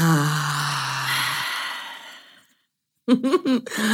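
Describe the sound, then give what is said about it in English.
A long, deep breath drawn through the open mouth to the back of the throat with a throaty rasp fades into a brief silence, followed by a voice talking. “And I do everything in and out of the mouth. So it's like breathing to the back of the throat.”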